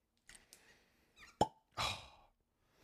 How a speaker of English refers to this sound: Listen to the cork. Fucking fantastic.